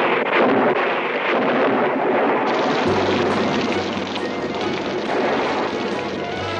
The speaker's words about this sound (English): Great Scott, what's happened? A sudden spring shower. What else? A sudden, very oily spring shower.